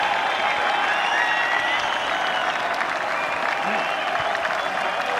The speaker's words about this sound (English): Everyone standing, everyone applauding, as Shane Lowry and Tommy Fleetwood arrive on the green. But this, of course, is for the Irishman, Shane Lowry, who is on the point of winning the Open Championship.